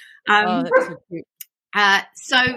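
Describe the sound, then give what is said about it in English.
A dog with laryngeal paralysis clears its throat with a few short, throaty, rumbling vocal bursts, grumbly and almost bark-like, separated by brief pauses. “He has laryngeal paralysis, in case you're wondering what's happening. He's just clearing his throat.”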